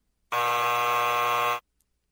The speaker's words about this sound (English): Hit the buzzer.